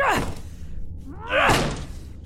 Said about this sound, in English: Help me break this door down.